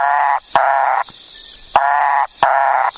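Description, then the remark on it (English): A Macaya burrowing frog calls four times in a steady rhythm, each loud, nasal, harmonic note lasting about half a second, with sharp clicks between notes and no talking. “Okay, yeah, we also found the Macaya burrowing frog.”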